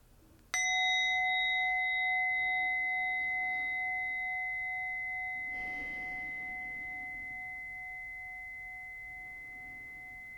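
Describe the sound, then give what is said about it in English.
A single meditation bell is struck once to end a meditation, its clear metallic tone ringing out with steady overtones and slowly fading over about ten seconds, alone in quiet. “Now, as I invite the bell to end our meditation, I invite you to take 3 deep, full breaths.”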